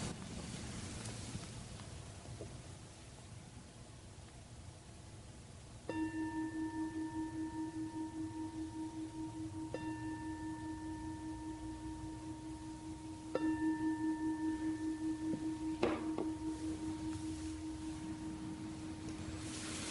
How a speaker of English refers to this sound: In a few moments, I'll ring the bell.